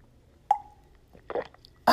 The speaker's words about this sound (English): As I take a sip of water.